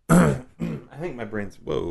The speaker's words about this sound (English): I coughed into the mic and then I talked in the corner. It's bouncing.